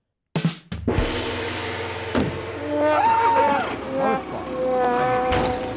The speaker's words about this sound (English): I have some fake breaking news if I want to get that out before your sad Yankee story. Yeah, let me do our breaking news sound.